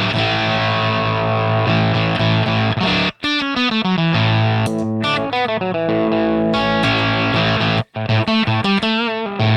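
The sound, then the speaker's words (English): Electric guitar run through an octave pedal, producing a harsh, trashy ring-mod-like tone with dense, buzzy harmonics. Sustained notes give way to a rapid played phrase with two brief gaps, loud throughout with no talking. “And with the octave, it turns into this weird, like, ring moddy, trashy thing.”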